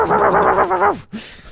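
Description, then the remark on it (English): A person imitates a barking dog at a woman on a train: one drawn-out, pulsing, gruff vocal cry that drops off at the end, followed by a short, softer yelp, fairly loud. “you saw a woman walk onto the train and you just started barking at her.”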